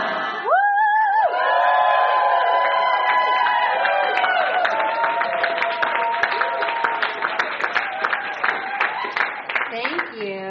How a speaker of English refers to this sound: So I'm going to start over here. We're going to all yell at this time. Go.